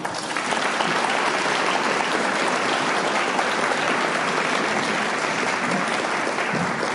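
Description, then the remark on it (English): Sustained applause from an audience for a speaker at a recovery group meeting, a dense, steady wash of many hands clapping at an even loudness for several seconds, with no voices standing out. “Okay, everybody, let's give our speaker a round of applause one more time.”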